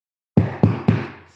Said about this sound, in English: knock three times if you're drinking in the private bathroom on this plane.